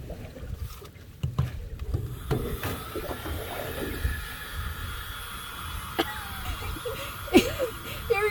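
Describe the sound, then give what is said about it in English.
A tiny handheld blower fan, like a little blow dryer, whirs steadily, a thin motor hum with airy rushing noise, broken by a few faint clicks and handling bumps. “No, it's the world's smallest blower.”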